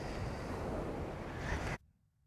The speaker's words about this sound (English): There's nobody around me, and there's the ocean sound, as you can hear, but let's listen to that again.